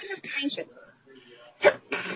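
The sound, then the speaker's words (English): A single sharp sneeze bursts out, brief and loud, set between stretches of quiet conversational speech. “God bless you.”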